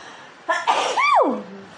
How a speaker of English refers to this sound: And I have the worst sneeze ever. But there you go. You got to experience my sneeze. I'm having a little cat cold allergies going on, but I'll be aight.